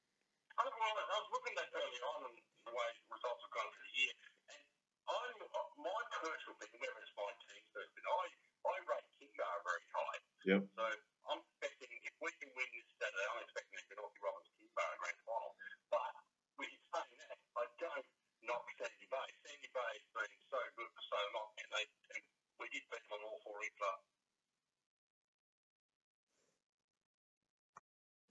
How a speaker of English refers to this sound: we just had a bit of a technical issue there with the phone